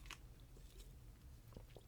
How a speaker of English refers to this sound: Hang on, I need to take a sip of my ginger water.